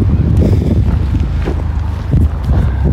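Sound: wind blowing outdoors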